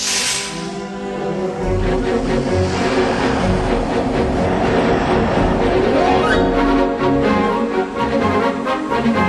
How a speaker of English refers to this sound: Never exit the tram while it's in motion because of the electronic field that's set up around the moving vehicle. It is very dangerous.